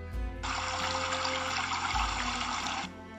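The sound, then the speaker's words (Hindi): River water in a jungle flows in a steady rushing wash for a couple of seconds, starting and stopping abruptly, with a faint low rumble beneath and no voices. “वह रोज नदी किनारे जाता, पानी में अपनी परछाई देखता और अपनी खूब तारीफ करता।”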